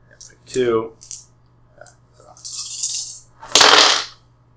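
Dice rattle and clatter across a hard table in two noisy bursts, the second louder, after a brief vocal sound near the start; two extra dice are rolled for an athletics check of difficulty 4 to throw a person in a game.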